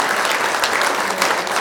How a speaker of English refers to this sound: Thank you very much. I think the young people deserve a round of applause, folks.